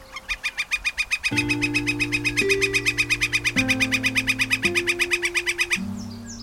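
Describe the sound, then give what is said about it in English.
A bird gives a fast, steady series of sharp, high calls, about eight per second, for the whole stretch. Sustained low musical tones begin underneath partway through and shift pitch in steps. “They just think it's a woodpecker.”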